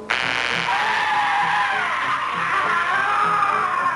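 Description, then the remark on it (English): A sudden sharp sci-fi gun blast as Brett fires his gun kicks off a long, loud scream from Daxter that wavers and slowly drops in pitch over several seconds as he dies, with a faint pulsing rumble underneath. “And yeah, so Brett basically pulls his gun out, and the gun makes a sci-fi noise, and Daxter screams until he dies.”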